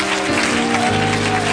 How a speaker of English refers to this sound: Now, before you're seated, put God into your worship. Clap with all your might.